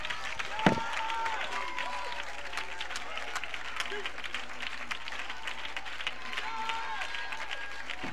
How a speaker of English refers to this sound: Oh, clap your hands and lift your voice.